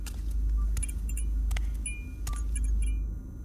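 A key scrapes and clicks into a door lock as the door is unlocked, with several sharp metallic clinks and a light jingle of keys over a steady low rumble. No one speaks.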